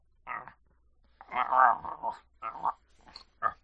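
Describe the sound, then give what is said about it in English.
A person growls and snarls like a dog in several short, rough bursts while biting at their own arm, fairly loud, with brief pauses between them and no clear words. “I'm biting at my arm.”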